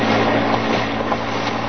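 A car engine rumbles steadily with a low droning hum and a broad noisy wash as a car with its lights on comes toward a parked car outside a garage in Battersea, London, holding an even loudness throughout without a clear rise or stop. No voices.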